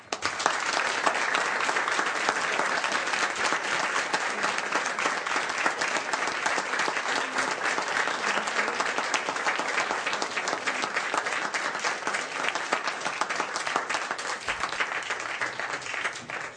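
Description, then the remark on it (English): Sustained applause from a sizable audience in Broward County, Florida, honoring a woman's professional accomplishments and years of public service: a dense, steady wash of many hands clapping at even loudness for over fifteen seconds, with no voices standing out. “And we applaud her for her many accomplishments during her professional career and thank her for her years of public service, diligence, and dedication.”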